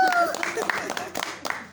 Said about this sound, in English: Well, she just gave a round of applause for this.